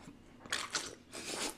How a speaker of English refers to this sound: Ready, set, sip.